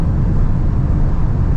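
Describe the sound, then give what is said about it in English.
Steady, loud roar of an electric car driving at its top speed of 180 on a windy day, with deep road rumble and rushing wind noise holding constant throughout and no voices. “And I think the interesting part also is that the car is, of course, very stable at its top speed. There is some wind picking up, but it's also windy outside today.”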